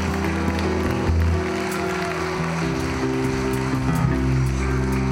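An audience claps in praise in a dense, steady wash of hand claps that holds loud for several seconds, with sustained low organ-like tones humming underneath.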